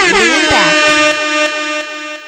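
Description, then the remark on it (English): A loud, blaring air horn blast sustains for a couple of seconds with a brassy, buzzing tone. Its pitch wavers briefly at the start before holding steady, then it fades slightly toward the end. “Yes, Air Horn.”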